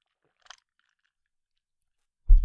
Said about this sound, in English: A few gulps to get caught up.